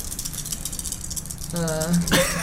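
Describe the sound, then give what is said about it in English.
Dice rattle and clatter in a quick, loose patter of clicks, followed by a brief murmur of voices and another short burst of rattling. “Alright, so now what you do is you roll your dice.”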